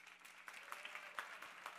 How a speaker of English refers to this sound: Actually clap if you really like LeBron James. Okay, cool. All right. How many guys clap if you actually don't like LeBron James?